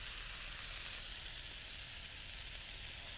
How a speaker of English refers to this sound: Yeah, so I put a lot of oil on there. That's what you're hearing sizzle.